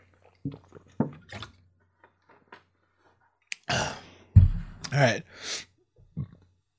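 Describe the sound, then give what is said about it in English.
Someone sips water: a few soft clicks and mouth noises, then a short run of slurping, swallowing sounds and a breathy exhale, with no talking. “excuse me, I'm gonna take a sip of water.”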